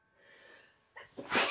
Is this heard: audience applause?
no